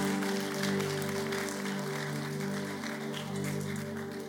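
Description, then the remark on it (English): A church audience claps for the Lord together in a steady, sustained burst of applause, with a held musical tone, like an organ or keyboard chord, droning underneath throughout. “Can you give the Lord a good clap of it?”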